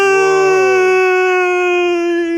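A man lets out a loud, sustained scream held at a steady high pitch for a couple of seconds, with a lower vocal tone underneath that fades out after the first second.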